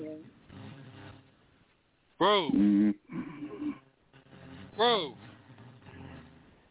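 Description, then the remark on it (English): A person snores in two loud, rasping bursts a couple of seconds apart, with quieter murmuring voices continuing in between. “You're snoring, man.”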